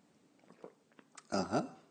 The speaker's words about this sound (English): I like coffee. And join me now for the unparalleled pleasure, the dopamine hit of the day, the thing that makes everything better, including institutional racism, but only if you drink it black. It's time for the simultaneous sip. Go!